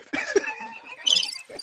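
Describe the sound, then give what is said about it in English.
A cricket chirping sound effect plays as a steady, high-pitched trill for under two seconds, with brief low vocal bursts breaking in at moments. “You can play the cricket sounds all you want to.”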